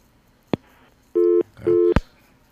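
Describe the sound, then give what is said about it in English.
A telephone rings with two short electronic bursts in quick succession, loud, with a sharp click just before the first ring and another right after the second. No talking. “No, they just started ringing. I mean, they weren't ringing before.”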